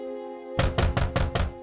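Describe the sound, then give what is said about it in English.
Five heavy, rapid bangs on the Mosslers' doors in Houston at night, in a steady rhythm, loud, following a moment of low sustained droning tone with no voices. “The same night that he was evicted, there was a banging on the Mossler doors.”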